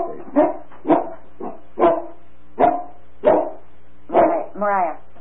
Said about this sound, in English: Molly barks at rabbits. I'm sorry about that. She does. She watches out the window.